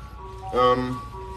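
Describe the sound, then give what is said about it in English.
A passing truck's tinny, tonal jingle drifts in from outside, holding steady notes with a brief louder swell in the middle, continuous through the short stretch. “The truck come by again? I can't with this truck.”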